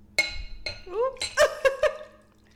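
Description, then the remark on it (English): Wine is poured into a glass: a few bright, ringing glass clinks and a short rising tone as the liquid fills, with several quick chimes near the end and faint background murmur. “pour it up.”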